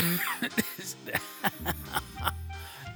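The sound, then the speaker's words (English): A harsh coughing fit from a person with strep throat: about seven sharp, strained coughs in an uneven rhythm, with low groaning vocal sounds between them, as if each cough hurts. “Coughing hurts, breathing hurts, I yawned and it hurt, which has never happened to me before.”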